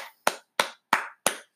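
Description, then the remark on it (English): Four sharp, evenly spaced claps ring out one after another, each with a brief decaying tail: a slow, deliberate round of applause for Seattle Mariners player McGill rather than a dense crowd ovation. No one speaks. “So once again, a big round of applause for the biggest underachiever last night on the Seattle Mariners, Mr.”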